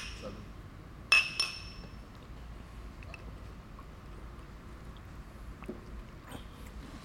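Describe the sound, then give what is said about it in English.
Glasses clink together in a toast, a bright chink followed quickly by a second tap, the ringing tone fading over a low, quiet background hum. “And, you know, cheers, fellas. Cheers.”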